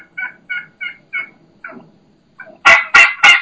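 A dominant turkey hen gives a slow, steady series of low yelps, about half a dozen evenly spaced, followed by three louder, harsher yelps at the end. No one speaks.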